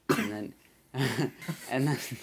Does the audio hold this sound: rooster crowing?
no